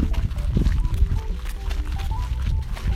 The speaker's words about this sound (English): Get some nice footsteps in the sand ASMR.